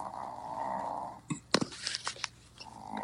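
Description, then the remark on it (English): A female dog gives a low, steady purring rumble; it breaks off for a second of sharp snuffling bursts, then the droning rumble picks up again. No one speaks. “My dog's purring.”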